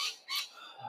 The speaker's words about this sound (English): I'm sorry about the choir of birds in the background.